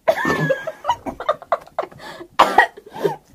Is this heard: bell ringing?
no